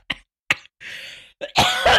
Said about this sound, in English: I'm coughing. You're literally allergic to the state of the country. It's the dust.